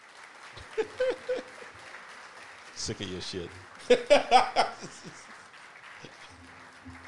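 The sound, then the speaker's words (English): A steady wash of audience applause runs through the whole stretch, with a voice speaking briefly over it partway through. “Oh, I was about to, again, about to hit the wrong button. Clap, white people.”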